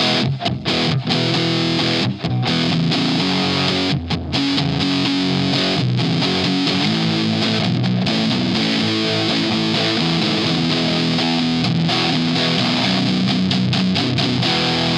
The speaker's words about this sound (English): If I stomp on the dirty channel on this orange. Oh, yeah. This is just the amp. Pure orange amp tone.